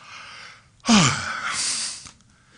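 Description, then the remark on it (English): A man's voice acts out Jesus waking up with a long, breathy yawn, opening with a sharp intake and trailing off into an airy exhale over about a second, fairly loud, with no words. “And you can see Jesus waking up with a yawn.”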